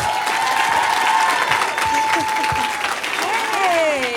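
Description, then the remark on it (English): An audience applauds Rashida Jones steadily for about four seconds, a dense wash of clapping that stays loud throughout, with whoops and sustained cheering tones rising above it. “So that being said, let's give a warm hand of applause for Miss Rashida Jones.”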